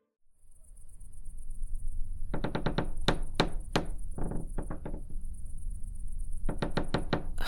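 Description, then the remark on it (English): An old house creaking, with bursts of quick, sharp knocks and creaks in irregular clusters, over a steady high chirping of night insects and no voices. “Damned house creaking.”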